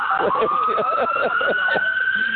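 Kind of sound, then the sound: vehicle, ambulance siren passing by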